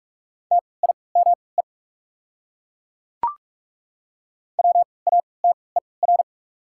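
Morse code beeps at 45 words per minute with 3x character spacing, spelling one of the 100 most common words: a steady mid-pitched tone, quick short and long pulses forming two clusters separated by a pause and a single sharp click, with no voices.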